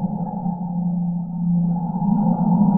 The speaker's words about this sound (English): And then what I did was I used the songs of humpback whales as the melody.